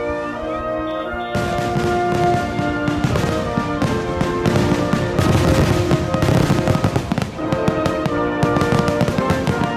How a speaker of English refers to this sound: John Adams is credited with the tradition of celebrating the birth of the United States with fireworks.